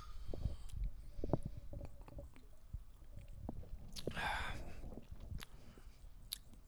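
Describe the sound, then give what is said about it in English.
Mouth sounds: scattered wet clicks and smacks, then a short airy slurp as someone takes a sip of apple soda from a can, followed by a few more quiet lip smacks. Nobody speaks. “Let's have a sip about it.”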